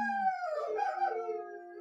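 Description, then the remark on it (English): German Shepherd dogs in a house howl together along with a siren in long, wavering harmonized tones, a sustained chorus that slowly falls in pitch before tapering off, with no one speaking. “You have wolves in your house? They're harmonizing.”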